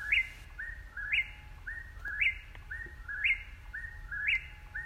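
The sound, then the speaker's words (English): An Eastern whip-poor-will calls its whistled three-part phrase over and over in a steady rhythm, about once a second, clear against a low, quiet background rumble. “And from today's intro music, you probably already know that we're talking about the Eastern Whippoorwill.”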